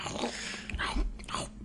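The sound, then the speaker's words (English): Crisp crunching of food being bitten, a few quick crackly bites in a row, fairly quiet, with no voices. “And then they have like the little crunch when they bite it.”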